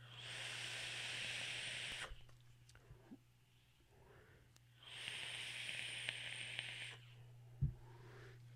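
Two long, steady sizzling hisses, each about two seconds, separated by a quiet pause, as a palm-held, button-operated vaporizer crackles during a draw, fairly loud over a low constant hum.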